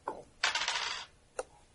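A single die, rolled for bashing damage in a tabletop role-playing game, clatters across a hard tabletop in a short, bright rattle lasting about half a second. A single sharp click comes before it and another as it settles. No one speaks.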